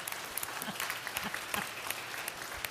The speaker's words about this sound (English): So because we don't celebrate, I'm going to applaud, and everybody else is going to clap with me.